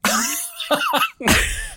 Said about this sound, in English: that's probably going to last about 30 seconds before I, you know, cough